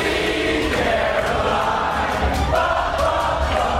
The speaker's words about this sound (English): Plus, hunkering down, hundreds of college students singing as a tornado barrels over them.